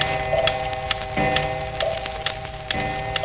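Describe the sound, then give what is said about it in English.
Many clocks tick and tock in an overlapping, uneven patter, with a sustained chime ringing steadily underneath. Fairly busy, with no voices. “Here and there, I threw in a chime.”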